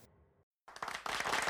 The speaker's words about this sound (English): Now, there we go. The artificial claps happening.